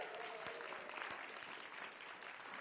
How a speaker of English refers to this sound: It was hard because teachers, put your hands up. Round of applause.